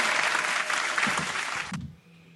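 A loud burst of applause, dense clapping filling the space for nearly two seconds before cutting off abruptly, leaving a quiet low hum.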